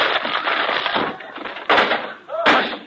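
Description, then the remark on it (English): A door is smashed as someone walks through it, with a loud, splintering crash, followed by a couple of sharp, heavy impacts, and a brief voice cuts in near the end. “I'll open the door. Never mind. I'll walk through it.”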